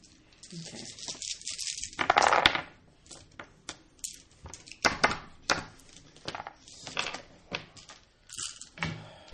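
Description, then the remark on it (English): Dice clatter and tumble across a hard tabletop as several players roll their dice, a string of quick, sharp clicks and rattles, with a denser burst early on and scattered knocks after. Faint voices murmur underneath. “All right, so everybody roll your dice”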